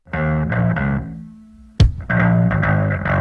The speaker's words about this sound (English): Good ringtone. Oh, I wonder who it is.